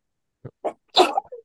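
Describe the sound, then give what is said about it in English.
A single sneeze: two short catching breaths, then a loud, sharp burst that trails off into a brief, softer exhale. No talking. “Sorry, I'm gonna sneeze.”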